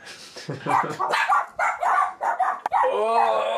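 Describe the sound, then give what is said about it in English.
A dog barks in a rapid, excited string of loud yaps, ending in a longer drawn-out whining howl. “What's fucking dogs.”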